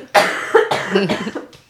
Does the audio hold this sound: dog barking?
no